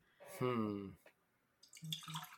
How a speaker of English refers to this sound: Okay, that's my app. Remind me to drink water.